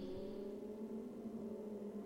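Lamborghini race cars in the 2015 Lamborghini Blancpain Super Trofeo at Circuit of the Americas hum in a steady, sustained drone with layered tones that barely shift pitch, moderately faint, with no voices over them.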